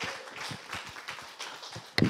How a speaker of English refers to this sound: So for a starter, let's praise the Lord on our 10-string instrument and give him a clap offering and begin to shout with a shout of triumph as we rise up and we worship the Lord in song now.